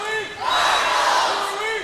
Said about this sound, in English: leading the cheer